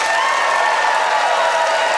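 A large audience claps continuously, voting by applause for Graham Clark, who argued in favour of shopping malls. A dense, loud wash of applause fills the whole stretch with steady intensity and no voices standing out.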